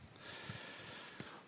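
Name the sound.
sniffling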